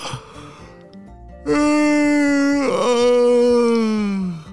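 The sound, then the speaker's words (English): A voice performs a big, drawn-out yawn as the story character Dominic wakes up in the morning, loud and sustained for about three seconds, its pitch sagging slowly downward with a brief catch in the middle, after a quieter lead-in. “The next morning, Dominic woke up with a big yawn.”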